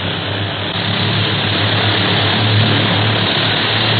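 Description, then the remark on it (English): A propeller airplane engine drones loudly and steadily as the plane climbs steeply, a dense continuous roar with a low throbbing hum, unbroken throughout with no voices. “Hey, you don't have to go straight up. Who's flying this ship?”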